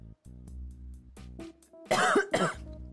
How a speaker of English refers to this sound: I think that one was brand pipe. Girl, cover your mouth and you cough. Sorry. That one was definitely your pipe.